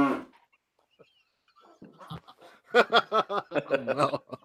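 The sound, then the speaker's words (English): A brief moo-like vocal call opens, then after a pause a voice imitates a cow with a quick string of loud, clear, rhythmic mooing syllables. “I say, meow, meow, Viking cow.”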